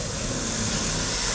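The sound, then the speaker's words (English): A nest of vipers in a cave gives a steady, breathy hiss. It is sustained and unbroken for over a second, bright and airy, with a faint low rumble underneath and no voices. “They had wandered into a nest of vipers.”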